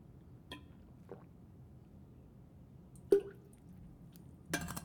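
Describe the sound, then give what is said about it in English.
Quiet sips of water: a few small wet clicks and slurps spread apart, one sharper glassy clink midway, and a brief rustling gulp at the end. No one speaks. “Taking a sip of water here.”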